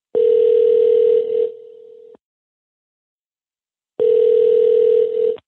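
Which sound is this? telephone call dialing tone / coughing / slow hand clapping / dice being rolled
telephone call dialing tone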